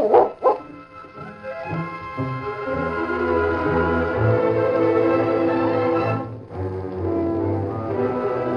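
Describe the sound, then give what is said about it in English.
A dog named Duke growls and barks as two horsemen approach, opening with two sharp barks and then carrying on in a steady, rough, drawn-out stretch of vocalizing with a brief pause near the end. “Suddenly, the dog growled and barked as 2 horsemen approached.”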